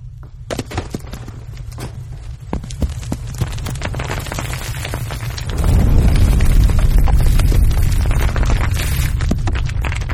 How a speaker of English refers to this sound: We have a sound effect. We have a knowledge bomb sound effect. When somebody drops, there's an explosion.